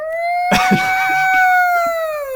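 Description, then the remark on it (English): A voice imitates an air raid siren, holding one long, high, steady wail that swells slightly and then slowly sags in pitch, with brief murmurs from other people underneath. “Gonna be an air raid siren.”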